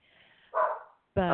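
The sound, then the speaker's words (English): A dog in a studio on Take Your Dog to Work Day gives two short barks a moment apart, moderately loud, with a bit of faint background noise before the first one. “I hear a dog album, in the background. It's Take Your Dog to Work Day here in the studio.”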